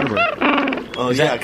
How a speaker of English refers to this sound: Oh, yeah, because I hear the water. Yeah. Puffin was close. Yeah, that's good. Penguin? It's penguin, that's right.